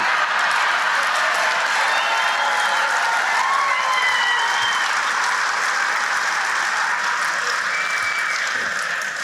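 A large crowd bursts into loud, sustained applause, a dense wash of clapping that never lets up, with a few whistles and cheers rising above it.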